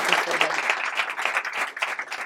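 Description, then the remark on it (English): A studio audience at a Voices in Leadership event at Harvard T.H. Chan School of Public Health breaks into applause for Gina McCarthy, a dense, steady wash of many hands clapping at once that holds at an even, fairly loud level for a couple of seconds with no voices standing out. “Round of applause for Gina McCarthy.”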